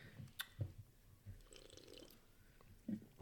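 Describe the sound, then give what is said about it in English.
A third swig from a drink during a taste test: faint liquid sloshing and a few soft gulping, wet mouth sounds with brief clicks, no talking over it. “I'm gonna give it a third swig.”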